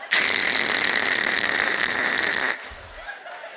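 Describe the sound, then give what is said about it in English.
A voice imitates a dial-up internet modem connecting, as when a phone plugged into a computer dials in, with a loud, hissing, buzzy screech and a steady high whine, held for about two and a half seconds before cutting off abruptly. “For those of you that don't understand what that means, you plug the phone into your computer and you dialed one of 14 numbers because not all of them worked all the time. And then it go, E-R, E-R.”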